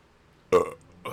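A loud burp erupts after a moment of quiet, with a brief rough tail and a second short belch-like burst right after, from a person who has just drunk a Monster energy drink.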